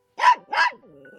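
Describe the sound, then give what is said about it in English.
A dog barks twice in quick succession, loud, followed by a brief low whine or growl as the sound trails off. “What sets him apart is the fact that he was a dog.”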